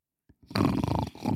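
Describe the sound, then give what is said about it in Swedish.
A loud, rasping snore, probably a person imitating it, rattling for about half a second after a few soft clicks, then briefly resuming. “Du, snarka inte.”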